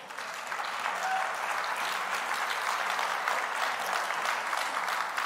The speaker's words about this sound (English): Now, that was great to clap for.